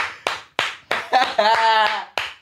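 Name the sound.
hand clapping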